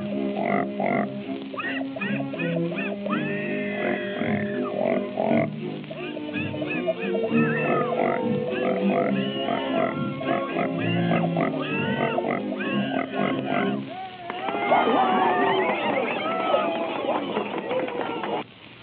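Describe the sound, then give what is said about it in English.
Two pigs oink and squeal at tuned pitches, strung together into a lively, continuous melody with musical accompaniment; loud, with a burst of rising squeals near the end. “First, I gotta get them in pitch. Well, that's good enough. We ain't so particular as Minnie. Presenting Mr. and Mrs. Patty Pig.”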